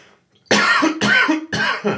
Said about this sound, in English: I just want you to know I'm about to cough. Go ahead and cough.